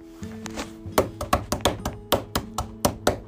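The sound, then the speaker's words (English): Repeated banging on a table, a quick, uneven run of about a dozen hard, dull thumps over a low sustained tone that drifts between pitches, with no voices. “He knew his mom wanted him to stop banging, but did he stop?”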